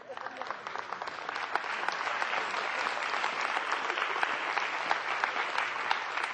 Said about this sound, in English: Would you stand up and just let the congregation applaud you?